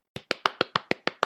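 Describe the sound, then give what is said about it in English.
A brief burst of applause: eight sharp, evenly spaced hand claps in a quick steady rhythm, crisp and fairly loud, with no voices. “Yay! Applause! Yay!”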